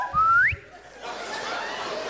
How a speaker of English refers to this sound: That's our family whistle now.